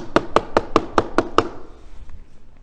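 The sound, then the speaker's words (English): Seven loud, emphatic, evenly spaced knocks rap on a door in quick succession, each sharp, followed by a faint lingering room tone. “When all of a sudden, there is a very emphatic knock on the door.”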